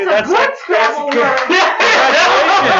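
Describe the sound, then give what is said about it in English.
A crowd claps steadily through the whole moment, a dense patter of many hands mixed with loud cheering and laughing voices, with no single clap standing out. “No, I'll take my applause up your own asses.”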